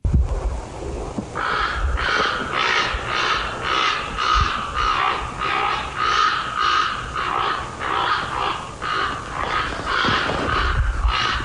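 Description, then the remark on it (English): At night outside a house, recorded on a phone, a crow or raven caws over and over in a steady run of harsh, rasping calls, with a low rumble of wind underneath and no talking. “I mean, the one sounds like a crow or a raven, certainly, but I didn't know they cawed at night, but according to a lot of people, they do.”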